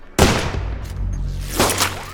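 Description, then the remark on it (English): A single loud, sharp gunshot crack, a warning shot fired from a helicopter, bursts out and echoes against buildings over a low rumble, followed by a second burst with a brief whining ricochet as it sparks off asphalt. “There was a loud crack that echoed against the buildings as a spark flashed off of the asphalt.”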